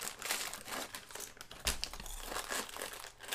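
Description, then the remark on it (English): A packet of digestive wheat biscuits crinkles and rustles continuously as it is pulled open, with bright, crackly plastic noise and a sharper, louder crunch partway through. “Oh, they're hard to open.”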